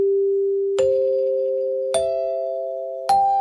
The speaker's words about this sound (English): Now, when the chimes ring, is that the signal for the affiliates to cut away? No, that's time for us to go take a bathroom break.